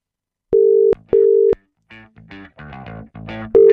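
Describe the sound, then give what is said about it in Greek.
A phone's ringback tone sounds twice in steady, even beeps, then a short melodic tune plays before the tone starts again, loud, as the called person does not answer. “Έλα μπρε, αφεντικούλη, σήκωσε το. Τα αφεντικά σηκώνουν πάντα το τηλέφωνο.”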